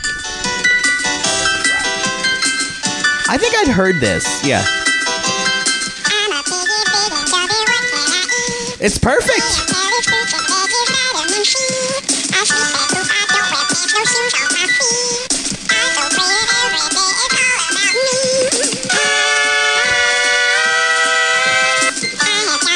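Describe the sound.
The guinea pig song plays throughout, a bright, high-pitched and bouncy tune with chirpy synth-like notes at a steady loud level, while a couple of people briefly talk over it.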